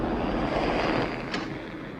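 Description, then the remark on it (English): A helicopter's engine and rotors roar in a steady, loud drone in a film scene, with no voices, holding constant throughout with only a slight dip near the end. “When he's shooting at the dog at the out camp, of the helicopter.”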